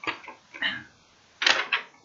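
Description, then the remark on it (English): A single sheet of paper held in the hand rustles and crinkles in several short, crisp bursts: a few quick handling sounds, a brief pause, then two more rustles. No one speaks. “You guys can hear the paper. I'm holding it.”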